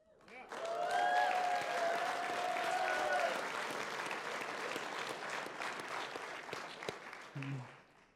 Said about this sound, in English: You clap now.